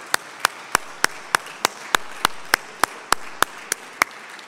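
Audience applause in a steady, even rhythm: about fifteen sharp claps, evenly spaced, over a low wash of background noise, with no voices.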